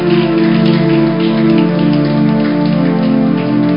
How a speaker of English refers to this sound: We need to celebrate this man. Let's clap for him.